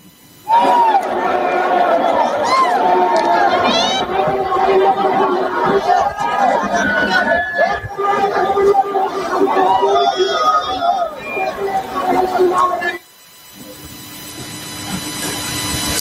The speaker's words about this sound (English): You could call it the defining moment. This happened on Saturday. A massive crowd stormed Sri Lanka's presidential palace and the secretariat. This is what it looked like.